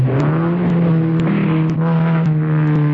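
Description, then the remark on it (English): A car engine roars loudly, a low, steady, throaty drone that surges slightly as it revs, with no voices over it. “A man who knows how to handle his car.”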